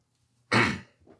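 A single harsh, throaty cough bursts out after taking a drink, followed by a softer, brief throat-clearing rasp, with no talking around it.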